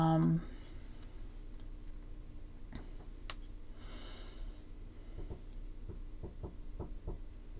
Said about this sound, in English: I can't tell if that's a bird knocking on my wall. Oh, so right now, if you can hear that, that tapping noise, I swear, I think it's a bird or something.